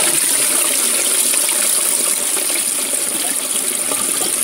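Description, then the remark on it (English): A toilet flushes with a loud, steady rush of gushing water that fills the whole moment, unbroken, easing only slightly toward the end. No voices. “Don't flush when Mum's in the shower.”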